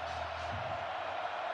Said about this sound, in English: Crowd in a frenzy.